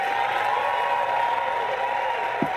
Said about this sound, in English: Why are people cheering? The reason people are cheering is because they're stupid.